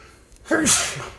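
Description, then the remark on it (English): A single sharp sneeze bursts out, a quick voiced intake followed by a hissy, explosive release that trails off within a second. “Sorry. Bless you, bro.”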